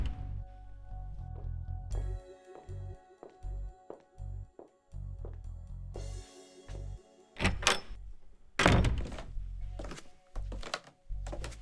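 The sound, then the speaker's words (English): A basement door is handled: a series of low thumps and knocks, then a louder rattle and a heavy thud as it swings and shuts. No one speaks. “Oh, another door?”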